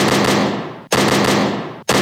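Three loud gunshot sound effects played from a soundboard fire at a steady pace, under a second apart. Each sharp blast rings out into a long, noisy decay before the next shot, with no voices.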